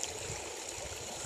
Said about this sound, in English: The feet quite literally as they're in the water at Rosemary's Bridge. And yeah, so that's the water you can hear in the background just running over the edge.